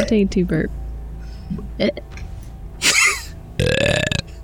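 A couple of brief voiced sounds, then a short gurgling burp sound effect followed by a longer, louder burp, both prominent with no talking over them.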